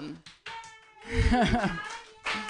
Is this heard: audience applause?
yes